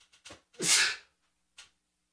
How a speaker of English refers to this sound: I gotta sneeze.